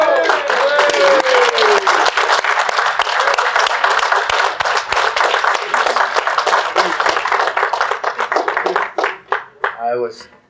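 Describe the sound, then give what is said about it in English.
An audience at an ASMAC event bursts into sustained applause for a drummer after his introduction, dense clapping from many hands with a brief whoop near the start, gradually thinning out before a voice begins at the very end. “he was complaining about the applause, and I got a larger perception than he did, so I'm sorry.”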